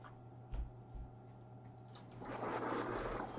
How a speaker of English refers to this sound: Oh, all right. Closing my patio door right there.